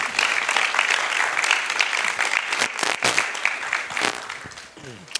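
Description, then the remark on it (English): An audience claps in sustained applause for a guest who has just been introduced, a dense, steady crackle of many hands holding at an even loudness for several seconds, with a few sharper individual claps standing out near the end. “Can we give her a nice round of applause, please?”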